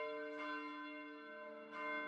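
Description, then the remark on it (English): A church bell rings with a rich, sustained tone, two strikes about a second and a half apart, each blooming and then lingering as the hum carries on. No voices are heard. “Just great to hear that bell.”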